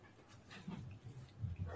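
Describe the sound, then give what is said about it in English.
A dog whimpers and pants in short, breathy bursts with soft whining tones, fairly quiet, no voices. “I have to go let my dog outside real quick, but then I'll be right back.”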